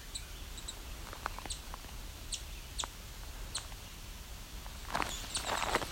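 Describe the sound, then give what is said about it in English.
Calls of one chipping sparrow and a female American redstart, the higher-pitched one being the chipping sparrow: a handful of sharp, high chip notes spaced irregularly over a quiet outdoor background, followed by rustling footsteps near the end. “Ah, so you hear one chipping sparrow, and the other thing you hear is an American redstart, actually.”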